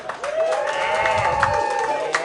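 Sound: audience applause and cheering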